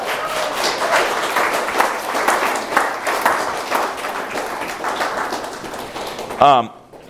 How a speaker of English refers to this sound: These ladies have been serving us all these days. Are you thankful for all the service that's been done for us? You can applaud for them.